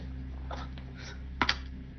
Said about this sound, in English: You may roll the 1d10. Throwing dice on the floor.